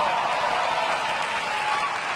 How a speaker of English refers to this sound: Became a father for the 4th time. Never as much applause on that part. Really no applause, right? Because after the 3rd kid, people stop congratulating you.